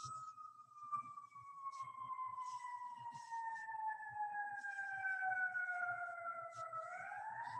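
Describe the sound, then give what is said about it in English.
A siren wails steadily during a moment of silence, its long tone sliding slowly downward as an emergency vehicle passes, with faint low murmuring underneath. “I love that there's a siren. Do you hear the siren as we have a moment of silence?”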